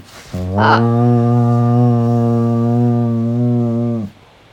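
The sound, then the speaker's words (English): A loud, deep foghorn-like blast held steady for nearly four seconds, apparently a person's voice imitating the horn, rich and buzzing, ending abruptly into near silence. “Like a foghorn of some kind.”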